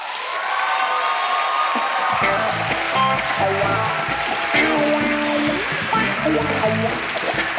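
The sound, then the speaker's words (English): A live show audience gives a dense, steady wash of applause that fills the whole clip at a strong, even level. A few seconds in, a bass-heavy musical phrase with sustained tones joins underneath the clapping. “I want to give a great big Snap Judgment round of applause from Mr.”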